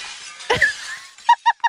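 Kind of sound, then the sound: sound effect, glass shattering sound effect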